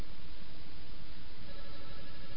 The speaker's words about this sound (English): Someone's phone ringing? I just turned it off.